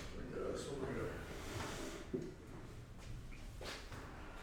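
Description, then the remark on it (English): A chair scrapes and shuffles across the floor as it is dragged into position for a person to sit at, with a brief knock partway through, while indistinct voices murmur quietly in the background. “Get a chair there”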